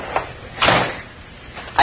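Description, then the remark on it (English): A cottage door swings shut with a solid thud in the middle, bracketed by a couple of lighter knocks and rattles before and after, with no talking. “Shut the door if you come in”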